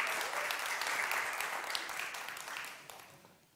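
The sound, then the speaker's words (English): A church crowd claps steadily for its 10 years, a dense wash of many hands with a few sharper claps standing out, gradually fading toward the end. “So give yourselves like a big round of applause for that.”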